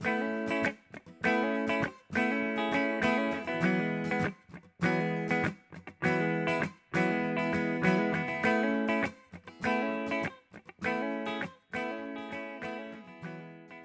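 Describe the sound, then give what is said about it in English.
Two layered acoustic guitar parts strum full chords in a steady, rhythmic pattern, with short breaks between phrases, added to fill out a song. The bright, dense parts play loud, with no voices. “I felt like the guitar part by itself was a little weak, so I added two acoustic guitar parts to fill it out a bit more.”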